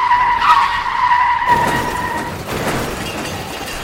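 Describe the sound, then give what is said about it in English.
Two ambulances' tires screech in a loud, high, steady squeal for about a second and a half, then it cuts into a harsh burst of crashing, grinding noise as the ambulances collide with each other on a street, rumbling on until the end. “In a horrible peppermint twist of fate, the ambulances have collided with each other.”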